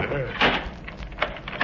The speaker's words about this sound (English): Why did you close that door? Well, I did not touch it.